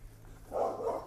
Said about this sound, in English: Oh, it's a big dog.